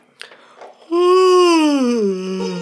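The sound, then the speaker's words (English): A loud, drawn-out vocal yawn: a voiced tone that starts after a soft breath and slides slowly downward in pitch, lasting almost two seconds with no speech. “That was an actual yawn.”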